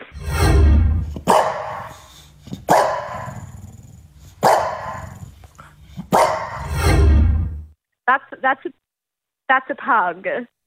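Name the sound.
dog barking and growling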